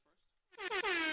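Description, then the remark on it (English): A loud, sustained air horn blast, sounded to start a clock, kicks in after a brief quiet moment, its rich harmonic tone holding steady until the end. “Give us a little foghorn to get us going.”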